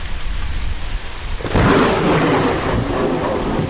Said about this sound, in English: It's pouring like crazy out there.